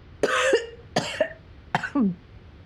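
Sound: coughing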